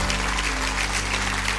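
A large audience, asked to stand, applauds for the word tonight: a dense wash of many hands clapping at once, steady and fairly loud, with a low hum underneath and no voices standing out.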